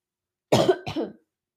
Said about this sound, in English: Oh my gosh, cough.